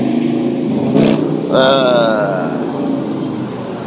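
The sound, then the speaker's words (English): A motorcycle engine revs loudly, its pitch climbing in a sharp burst before settling into a steady roar as it passes, with traffic noise throughout. “Oh, that sounds like a motor.”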